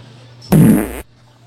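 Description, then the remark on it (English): A single loud fart lasting about half a second, a low buzzy rumble with a broad raspy hiss that starts abruptly and cuts off just as suddenly, with quiet hum before and after. “We should start the hot box seat. Where we just fart.”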